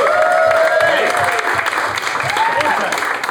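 studio audience applause

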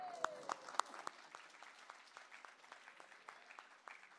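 audience applause

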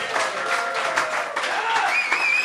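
round of applause

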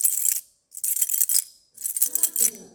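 keys jingling

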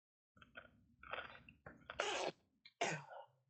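sneeze

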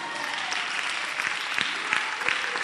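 audience clapping

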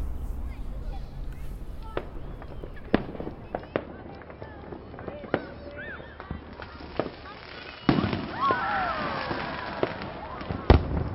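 fireworks going off

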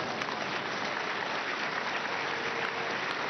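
audience clapping

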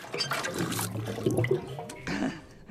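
water being poured

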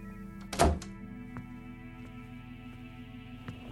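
door being closed

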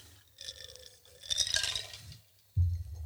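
glasses clinking together

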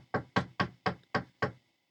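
knocking on a door

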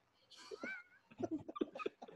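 cat meowing and yowling

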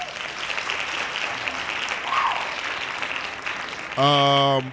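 hand claps

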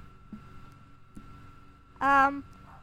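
dogs barking

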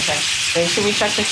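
chicken frying

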